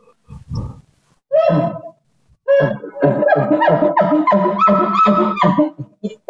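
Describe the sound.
A person imitates a cow with low, guttural grunts from the gut: a couple of short separate grunts, then a longer run of rhythmic, throaty pulses, fairly loud.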